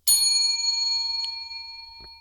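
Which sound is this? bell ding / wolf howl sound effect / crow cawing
bell ding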